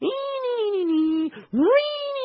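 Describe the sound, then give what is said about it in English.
A voice imitates screeching, wailing violins with two loud, sustained cries, the first sliding slowly downward, the second swooping up after a brief gap, with no other sounds around them. “And then, over all of it, the tortured cat violins.”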